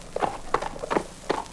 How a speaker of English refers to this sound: Sound like a horse dancing. Oh, this is cowboy stuff. That horse is the best tap dancer in the West.